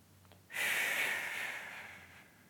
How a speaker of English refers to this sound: So by holding this weight down and feeling my abdominals, I'm going to focus on that side-to-side breathing.